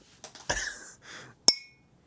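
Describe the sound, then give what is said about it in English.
Glasses clink together in a toast to a great year, one bright tap that rings briefly with a clear tone, preceded by softer knocking and shuffling noises, with no talking. “Cheers to you guys. Cheers. Cheers to a great year.”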